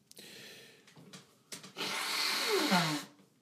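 A few short sniffs and breaths lead into one long, loud, rushing nose blow lasting over a second, ending in a brief falling honk. No one speaks.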